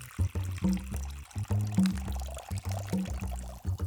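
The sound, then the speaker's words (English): Water pours into a large bowl on a table, to make arepa dough, in uneven gulping bursts, splashing and gurgling for a few seconds with no one speaking. “One, go to a table and put water in a large bowl or container.”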